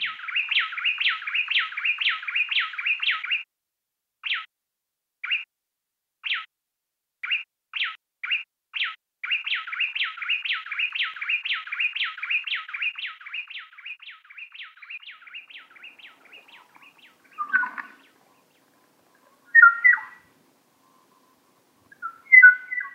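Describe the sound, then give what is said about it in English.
Bright, whistled song of a female and a male bay wren from an antiphonal duet, their songs separated, with fast rhythmic phrases: a rapid run of repeated notes, then spaced single notes, then another long trill that fades, followed by a few separate chirpy calls near the end. “This is called an antiphonal duet, except now we've separated their songs.”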